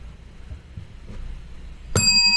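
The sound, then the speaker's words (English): A single bright comedic bell ding rings out suddenly near the end, loud, its metallic shimmer lingering after a stretch of low, quiet background rumble. “That's the funny bell, and you should be laughing.”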